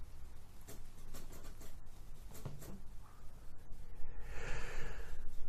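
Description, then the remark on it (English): The speaker's chair squeaking as it is deliberately rocked to make it squeak, with scraping creaks and brief squeals that grow louder toward the end into a sustained, higher-pitched squeal. No one speaks. “Sound of my chair squeaking. I'm purposely making it squeak now.”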